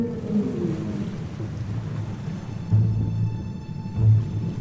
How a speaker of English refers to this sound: It beat out the rumble of the great blue whale.